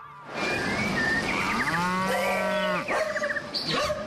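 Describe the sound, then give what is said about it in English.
A cow lets out a long, loud, drawn-out moo, with a shorter lowing call near the end and faint bird chirps in the background; no one speaks. “Cows, dogs, some exotic birds.”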